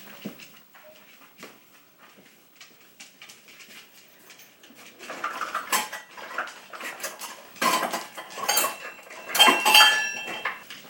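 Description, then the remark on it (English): A ceramic ramekin holding spices and a pot being handled during cooking: scattered light clinks and scrapes at first, building into louder clattering knocks and rattles toward the end, with no voices. “So I'm going to reach over and pick up the little ramekin where the spices are.”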